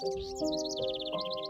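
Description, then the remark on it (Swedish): Birds chirp in quick, busy repeated bursts throughout during breakfast, clear, with a steady low humming tone running underneath. “Det var länge sedan jag kunde höra fåglarna kvittra till frukosten.”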